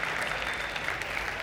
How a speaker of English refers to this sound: We are 69 years old this week. That's wonderful. We can clap for that.